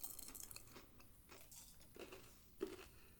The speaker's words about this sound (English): Good crunch immediately from off the bat from the candy coating and that creamy peanut butter.